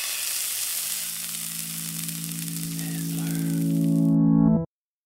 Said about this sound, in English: can we get a sizzle sound cue?